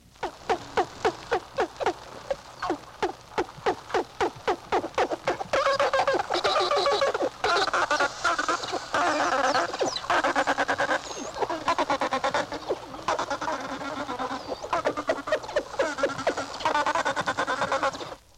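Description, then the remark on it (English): Dolphin vocalizations recorded underwater: a quick train of clicks gives way to a steady stream of squeaky, whistling and chattering calls, fairly loud, with no talking. “Actual recording of sounds produced by a marine animal underwater.”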